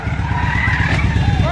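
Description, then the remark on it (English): Car tires squeal in a sustained, wavering screech over a loud, rumbling engine, the pitch sliding up and down as the car spins circles in the road. “She's just doing circles in the road, huh?”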